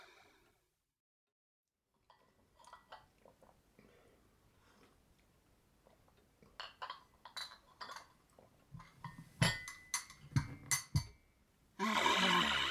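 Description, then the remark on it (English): Teacups and china clink irregularly over a cup of tea, sparse and soft at first, then sharper and louder in quick bursts, before a brief rush of noise closes it. No one speaks. “Do you fancy a sit down? Yeah. Cup of tea? Go on then. Got any biscuits?”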